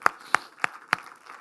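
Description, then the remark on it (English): Four sharp, evenly spaced hand claps of praise to God sound in a steady rhythm, roughly three per second, then stop, leaving only a faint hush with no talking. “I think we ought to give God a good hand clap of praise.”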